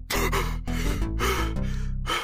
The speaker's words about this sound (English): I gasped for air as he took the hand from my mouth.